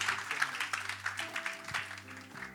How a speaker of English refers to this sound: So would you join me in giving Pastor Chris Dow a massive round of applause as he comes and joins us and speaks today.